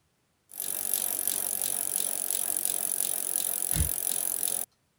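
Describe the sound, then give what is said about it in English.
A bicycle rolls along steadily for about four seconds, its chain and frame giving off a fast, regular rattling tick over a hiss of wheel noise, with one low thump near the end. “Plane. Bicycle.”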